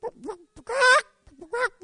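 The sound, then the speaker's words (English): A person imitates the clucking of a talking coffee mug with a chicken on it: a few short, nasal squawks around one louder, drawn-out cackle, all fairly loud, with brief pauses between the bursts. “But you pick it up and go to drink coffee out of it, and it crows and says, no, it clucks.”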